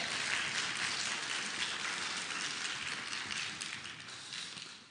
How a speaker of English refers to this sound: All right, now you can applaud if you would like to applaud.